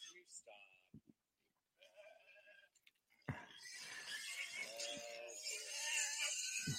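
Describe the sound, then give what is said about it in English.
Several goats, including Mikey and Scratchy, bleat in quick succession in Punta Gorda, Florida, their wavering, nasal cries overlapping and growing louder and more crowded toward the end, with a busy outdoor background. “Noisy guys, huh? That's the goat mafia right there.”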